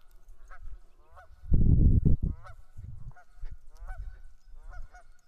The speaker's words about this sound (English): The geese are cheering. The geese are squawking.